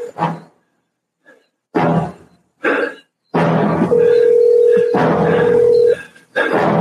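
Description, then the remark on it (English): A telephone dial tone hums steadily for about two seconds, surrounded by several short, sharp bursts like buttons or a handset being handled, loud. “Please, put the phone down.”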